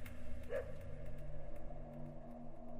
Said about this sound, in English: Oh my god, the dog barking is back.